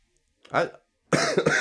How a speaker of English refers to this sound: I'm sorry I'm coughing so much. I'm sorry I'm coughing so much, everybody. I'm sorry I'm coughing so much. It's going to continue throughout the episode.